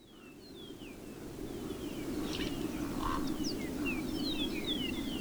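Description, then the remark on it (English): A steady low roar of desert wind in the Sonoran Chihuahuan Desert in New Mexico builds slightly, while Chihuahuan raven calls ring out in short, scattered bursts above it, with no talking. “We leave you this week in the desert, the Sonoran Chihuahuan Desert in New Mexico, with the sounds of the wind and the Chihuahuan raven.”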